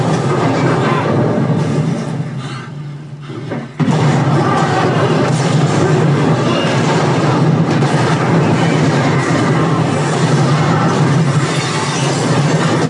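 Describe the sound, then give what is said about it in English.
Depth charge explosions fill a movie soundtrack, some from the front right, some from the front left and some from the rear, with a dense, loud roar and deep low rumble. It dips briefly, then a sudden blast brings it back, thundering without pause to the end. “Some explosions happening at the front right, some on the front left, some in the rear.”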